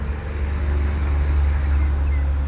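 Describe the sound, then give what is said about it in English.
A heavy truck rumbles down a road, its deep, steady engine drone and tire noise filling the scene without a break, fairly loud with no voices. “A truck just went down the road.”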